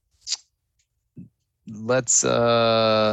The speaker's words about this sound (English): I'm clicking away. I lost my notes here.